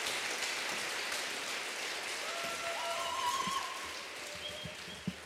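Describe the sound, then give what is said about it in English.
Steady audience applause after a performer finishes, a dense continuous patter of many hands clapping at even loudness throughout, with a few faint whistles rising above it and no voices. “And let's not rest our hands too long, because applause is well and truly needed for our next performer”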